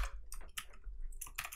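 A quick burst of keyboard typing, a series of crisp, irregular key clicks over a low background hum, with no voices.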